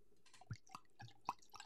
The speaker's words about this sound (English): When you see this bottle come out, then you know it's going to be one of those episodes. And without further ado, let's pour it up.